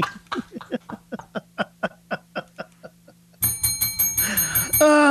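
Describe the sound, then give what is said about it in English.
A bell sound effect rings in a quick, steady series of about a dozen sharp strikes, then gives way to a louder, continuous metallic ringing for the last couple of seconds. “That is the inappropriate bell in honor of the late legendary Opie and Anthony show.”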